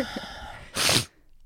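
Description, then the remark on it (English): A single loud, breathy sniff from someone near the end of a cold, a short sharp rush of air through the nose lasting under half a second, with quiet before and after and no talking. “Yeah, I got the sniffles real bad.”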